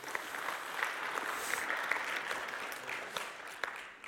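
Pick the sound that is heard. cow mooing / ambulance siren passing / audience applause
audience applause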